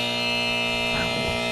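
A loud, harsh game-show buzzer blares steadily for about a second and a half, sounding a single sustained wrong-answer tone with a brief murmur of voices underneath.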